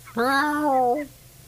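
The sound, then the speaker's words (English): A person at a radio station imitates a cat with a single drawn-out meow, fairly loud, lasting about a second, its pitch rising slightly and then falling before trailing off into quiet. “Anytime we have a stray here at the radio station, I'll talk to it.”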